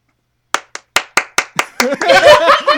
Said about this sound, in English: Everyone applauses.